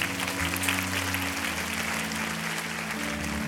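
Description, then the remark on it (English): An audience claps together in a dense, steady wash of applause, sustained and fairly loud throughout, with a low tonal hum beneath the clapping. “Come on, let's clap our hands one more time.”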